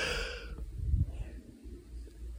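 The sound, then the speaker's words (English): A single drawn-out yawn from one person speaking, starting with a breathy rush of air and easing into a low, sighing exhale, fairly quiet. “And of course, I chose that moment to yawn for some reason.”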